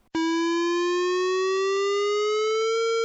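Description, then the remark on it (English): A warning siren around San Onofre Nuclear Power Station in Southern California, meant to alert local people to an accident, switches on abruptly and holds a loud, steady, harmonically rich wail, its pitch creeping slowly upward over a few seconds, with no voices. “It is the sound of a warning siren going off at a nuclear power plant.”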